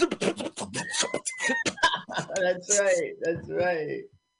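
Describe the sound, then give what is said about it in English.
A voice does a Mel Blanc-style impression of an old jalopy sputtering to life as its ignition is started: rapid choppy bursts and wheezes, then a rising, warbling whine that cuts off abruptly, loud and alone. “Sorry, I was so loud with our introduction, and now I was doing my Mel Blanc car impressions in your ears.”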